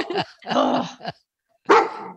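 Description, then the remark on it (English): A dog barks several times in quick, uneven bursts, fairly loud, with a short pause before a final bark; no one speaks. “Oh, your dog wants to ask a question.”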